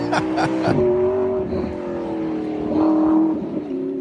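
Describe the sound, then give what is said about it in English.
A car engine revs loudly and steadily as the car drives through a fence, its pitch rising and falling as it accelerates and drives by, with a couple of sharp bursts near the start. “She's like, but damn, that car drives through another fence.”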